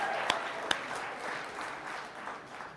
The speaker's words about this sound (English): One more round of applause for Spokane.